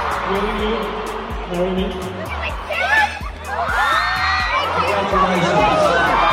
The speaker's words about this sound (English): Oh my gosh, the crowd quickly joined in on the serenade and cheered for the epic proposal that followed.